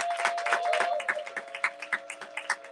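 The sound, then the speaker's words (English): A live audience at the Live Soul Detox 2023 Defense Mechanisms show applauds in a dense patter of clapping that thins out into a few scattered, separate claps toward the end. A steady faint hum runs underneath, and no one speaks. “Clap for yourself.”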